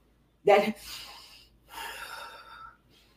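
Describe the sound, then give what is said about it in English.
A person demonstrates heavy breathing: a sharp, loud gasping inhale followed by a long, raspy exhale, then a second drawn-out breath, with no talking. “You know that heavy breathing that we like to do?”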